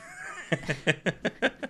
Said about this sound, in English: Oh, there's a cat.